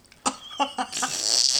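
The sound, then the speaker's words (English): A voice imitates a fart: a few short, sputtering bursts in quick succession, then a longer airy hiss that trails off, moderately loud with no talking. “Oh, man, I had a fart.”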